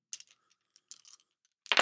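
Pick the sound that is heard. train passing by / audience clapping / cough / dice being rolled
dice being rolled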